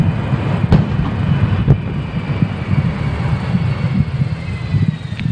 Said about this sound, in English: Smoke, flame, and at least one explosion. Takeoff was safely aborted, but both the number one and number two engines had failed.